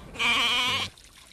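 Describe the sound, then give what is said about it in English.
A single loud, wavering bleat from a goat or sheep, lasting under a second, followed by faint outdoor background; livestock brought to a permanent water source at Kachoda in Turkana. “They can go graze their livestock, but at the end of the day, bring their livestock here to get water, which is near them.”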